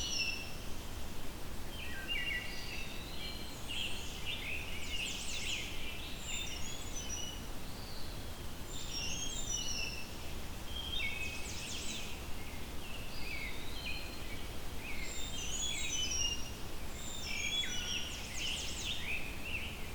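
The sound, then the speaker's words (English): A small bird that collects bugs on tree trunks calls repeatedly in high, thin chirps and twittering phrases over a steady low background rumble like wind or traffic, with no talking. “So if you look for a small bird following that pattern, you can find and see the bird.”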